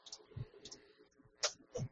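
Sharp, irregular clicks of keys being pressed on a computer keyboard, a handful of quick taps with no talking.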